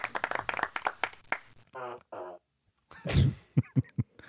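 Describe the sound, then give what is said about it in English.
A run of fart sound effects from a fart machine: quick sputtering bursts, two drawn-out buzzy ones, then a loud wet blast followed by a few short pops, with no talking. “So, there, we have the fart machine now.”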